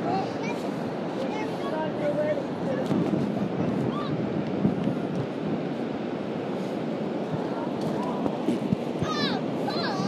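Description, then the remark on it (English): Steady, roaring Atlantic Ocean surf washing onto a beach, recorded on an iPhone 6 held inside a jumper, with wind buffeting the microphone and faint voices murmuring in the background throughout. “Are you coming to the waves? Yeah, come on, we go down the waves.”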